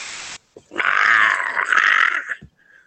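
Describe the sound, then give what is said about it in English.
A human voice imitates a creature's hungry growl: one loud, rough, guttural rumble held for nearly two seconds, preceded by a short burst of hiss and followed by quiet. “This is his hungry growl.”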